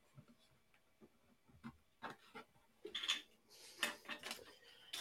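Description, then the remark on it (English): Scissors snip and click in a quick, irregular series of sharp metallic cuts, with light rustling of material between them and no voices. “Scissors.”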